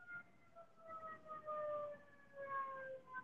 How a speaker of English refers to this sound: Got some sirens in the background. Nice. No one can say anything about the sirens because it wasn't me.